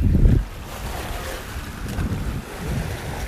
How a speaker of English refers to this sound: Do you hear the ocean? Yeah, you should because, you know, microphones. Anyway, the ocean is really cool because it smells like fish and salt.